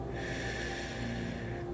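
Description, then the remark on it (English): A single slow, steady exhale during a guided relaxation breathing exercise rushes out softly and evenly for nearly two seconds, airy, with no voices around it. “Breathing in and out,”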